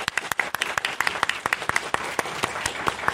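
An audience breaks into a steady round of applause for a guest, many hands clapping in a dense, crackling wash with sharp individual claps standing out throughout.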